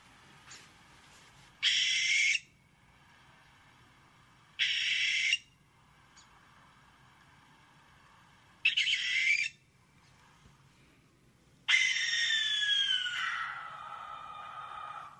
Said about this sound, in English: Yeah, let's do it. This is the barn owl.